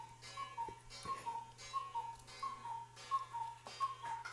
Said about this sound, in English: And that's the cuckoo clock.